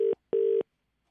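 A telephone ringing out on the line during a Radio City Breakfast Show prank call: a short burst of steady electronic ring tone, a brief gap, then a longer burst, followed by silence. Clear, with no voices.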